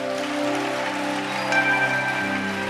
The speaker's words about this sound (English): Are you not excited about the testimonies? I can feel it from your hand clapping.